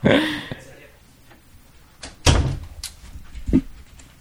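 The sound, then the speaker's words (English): A door is opened and closed, with a brief creaky start followed by a few solid clunks and knocks of the door and latch. “I knew it might be bad to break the seal on the door.”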